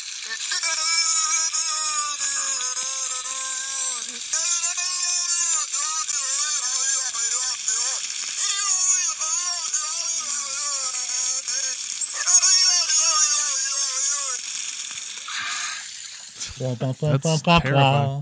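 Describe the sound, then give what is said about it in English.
A beluga whale named Nock makes a long series of warbling, voice-like tonal calls, like muffled human babble, over a steady bright hiss, ending in a few quick rising squeaks. “This is Nock, a beluga whale.”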